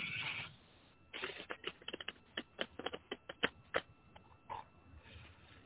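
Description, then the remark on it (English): Rapid crisp clicking and flicking of tarot cards being shuffled, a dense run of sharp snaps with a brief rustle at the start, no voices. “Ignore the shuffling noises here.”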